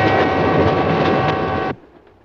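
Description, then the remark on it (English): A train rolls along its rails in a loud, steady rumble with a faint metallic whine running through it, then cuts off abruptly, leaving near-silence. “A train may be an old-fashioned way to travel, but an upper berth can be a lovely place to go when it's your time to go.”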